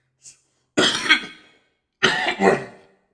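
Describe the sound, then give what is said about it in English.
Two harsh, forceful coughs about a second apart, fairly loud, each with a raspy trailing tail, preceded by a faint short intake of breath. No talking. “excuse me, guys. A little cough, excuse me.”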